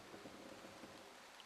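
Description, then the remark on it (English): Steady rain falls in a dense, continuous hiss, with a faint low rumble underneath and no voices. “I mean, I am in agreement with Irina, because, you know, again, rain.”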